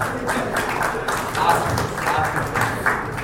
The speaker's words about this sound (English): You should not be applauding that performance.